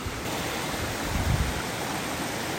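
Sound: waterfall rushing water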